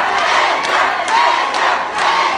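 A large crowd of students cheers and shouts loudly and continuously, a dense roar of voices with bursts of whooping rising above it.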